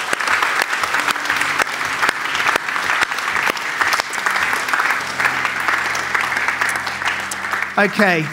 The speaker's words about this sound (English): Let's just give a round of applause. Those four people.